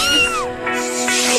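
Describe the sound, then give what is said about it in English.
A single drawn-out meow with a falling pitch from Doja Cat, a female cat, clear, followed by softer rustling noise over a steady low hum. “She's a doughty little cat.”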